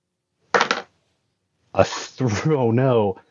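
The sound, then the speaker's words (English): A quick clatter of challenge dice tumbling across a table during a game, landing on a 5 and a 6, lasting a fraction of a second, followed after a pause by a person's drawn-out, sing-song vocal reaction. “We have a 5 and a 6 for the challenge dice.”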